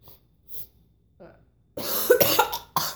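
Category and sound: human body sound, coughing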